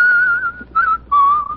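A person whistles a bright, cheerful tune in three short phrases, each a clear, steady tone with slight pitch glides, loud and alone with no talking.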